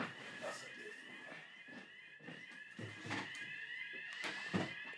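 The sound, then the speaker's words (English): A fire alarm rings continuously during a fire drill with a steady, high-pitched electronic tone throughout, while thumps and shuffling movements come and go underneath it. “We're just sitting through a fire drill, you know, just, huh?”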